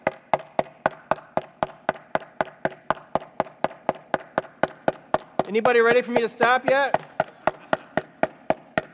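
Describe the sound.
Steady, rapid knocking repeats evenly, about three or four sharp raps per second, close and loud. A voice briefly speaks over it near the end while the knocks keep going.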